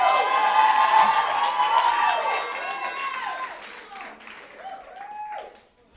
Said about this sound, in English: Amen. Come on, can you clap and shout to the Lord?